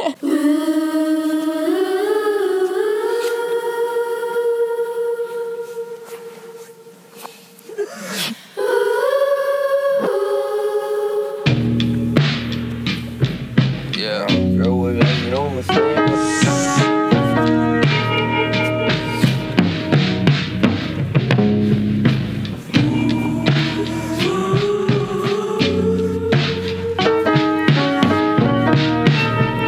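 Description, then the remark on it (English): A hip-hop song almost 8 minutes long plays at full volume, opening with a soft, sustained melodic intro before a heavy bass line and punchy drum beat kick in and carry on steadily. “I'm going to play you guys this song”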